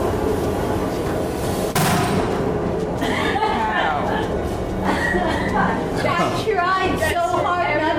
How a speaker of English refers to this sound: If all goes well, when I light the fuse, there'll be an explosion that will blow the wheel around. The idea is the farther it goes, the better.